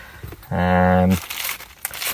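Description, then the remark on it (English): A short sustained voiced tone from a person is followed by about a second of dry, rustling crinkles of a plastic bag holding a geocache as it is opened and handled. “And I've just opened up the geocaching inside this paper plastic bag.”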